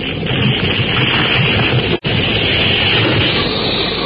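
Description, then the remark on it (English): A loud, steady roar of a jungle storm with a tornado: thunder rumbling and crashing amid howling wind, dense and unbroken apart from one abrupt split-second dropout midway, with no voices. “The deafening crash and roll of thunder combined with the banshee howl of the wind.”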